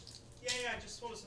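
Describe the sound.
Someone chokes on a sip of water, letting out a short, strained sputter and a voiced gasp that fades after about a second.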